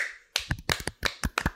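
A quick, uneven run of sharp hand claps, about eight or nine crisp slaps in under two seconds, fairly loud, with no voices underneath.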